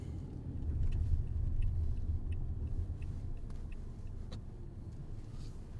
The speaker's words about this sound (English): Have you noticed the car behind us? Oh, they probably live here or something, you know?